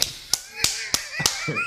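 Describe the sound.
Five sharp, loud hand smacks land in an even, steady rhythm, mimicking hammer blows, while faint voices murmur underneath.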